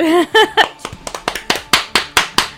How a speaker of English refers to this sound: This is our version of sending fan mail to Wharfcat. Yeah, just like, I think that's what it is. Clapping into the ether. Clapping into the ether.